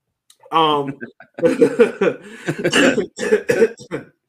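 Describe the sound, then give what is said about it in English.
A person coughs in a series of short, loud, rough bursts that come in quick succession after a brief vocal sound, with no clear talk alongside. “That's Chip making me cough to make sure I mention you Omaha on this podcast.”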